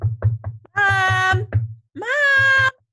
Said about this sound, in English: You're trying to have some downtime, trying to read, or you're trying to take a hot bath, and you've got little kids knocking on your door.